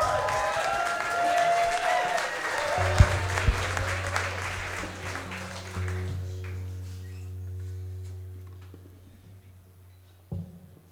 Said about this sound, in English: Let's hear a round of applause for ….